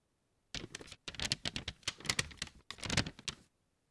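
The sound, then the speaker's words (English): A thin page torn out of an A5 notepad, about as thin as tracing paper, crinkles and crackles in three bursts of dense, rapid rustling, separated by brief pauses. The sound is fairly quiet, with no talking. “So, I tore out this page, and it has this crinkle to it.”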